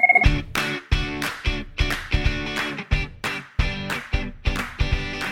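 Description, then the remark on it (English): A loud telephone ringtone repeats in a steady rhythm, about ten bright, buzzy tonal bursts evenly spaced with no talking over them. “Ring, phone, ring! Ring, motherfucker! Who's calling us now?”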